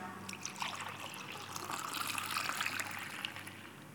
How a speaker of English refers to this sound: In the same way, he took the cup, and after giving thanks, he poured it out.